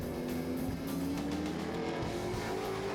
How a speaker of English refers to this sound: Of course he couldn't hear. He's driving the loud car.